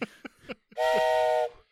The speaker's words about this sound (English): Hey, should we blow the whistle? Sure.